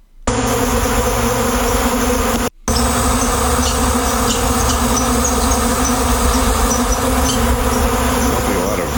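A dense, continuous buzzing of a big bee swarm that squirrels are angry at fills the scene, loud, with a brief cut partway through and faint high chirps scattered above the drone.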